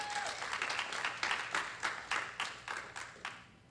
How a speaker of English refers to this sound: hand clap, please.